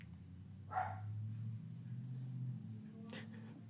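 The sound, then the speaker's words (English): A dog lets out two separate barks about two seconds apart as someone arrives home, over a steady low background hum. No one speaks. “I'm waiting on him to actually walk in the door so we can get the barking over with, but that's just not how it's going.”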